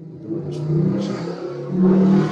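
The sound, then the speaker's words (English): A motorcycle engine revs and drones past on the busy street right below the room, its low growl rising and swelling toward the end, loud, with no talking. “You heard the motorcycle go by.”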